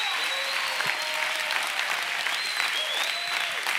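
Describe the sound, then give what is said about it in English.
A crowd applauds steadily, giving a clap for the Lord. Dense clapping fills the whole stretch at a fairly even loudness, with faint voices and a few whistles or cheers rising above the noise. “Yeah, give the Lord a clap.”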